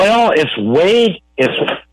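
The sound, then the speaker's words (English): A voice echoes back over a telephone line during a call, sounding thin and band-limited, loud in two bursts separated by a brief silent gap. “My voice is echoing back at me.”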